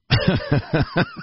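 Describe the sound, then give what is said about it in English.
A quick fit of coughing mixed with laughter: about six rapid, voiced bursts in a steady rhythm, fairly loud, lasting just over a second with no talking. “That's my highest praise for humor is a coughing fit.”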